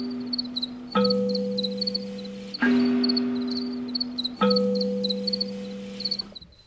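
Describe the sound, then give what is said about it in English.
A colony of male crickets chirps at night in overlapping, steady rhythmic pulses, locking in to create polyrhythms, a bright repeating trill throughout, with low sustained tones swelling in beneath them several times. “It feels like something's happening with like the whole colony. Like a lot of the males are locking in and creating polyrhythms, and then you hear different, like it's fantastic.”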